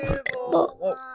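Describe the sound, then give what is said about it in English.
A boy burps loudly right into the microphone, a short run of croaky, gurgling bursts lasting about a second, alone with no talking. “just burped his wibble wobble into the microphone.”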